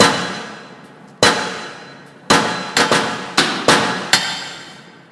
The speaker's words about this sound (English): The slam of a red postbox door in a town square on the way to Abingdon. If you combine all of them together, taking their audio qualities, you get this lovely snare sound and pattern.